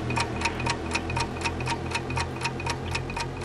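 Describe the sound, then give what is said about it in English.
A game show countdown clock ticks quickly and steadily, about four crisp, bright ticks per second, over a low sustained hum, with no voices, timing a contestant's 60-second round of questions. “for $1,000, your clock starts now”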